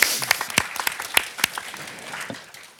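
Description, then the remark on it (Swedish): Audience applause: a dense patter of many hands clapping, with sharper individual claps popping out irregularly, steady in level and then thinning slightly toward the end. No voices. “En applåd.”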